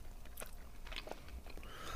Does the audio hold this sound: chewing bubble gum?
yes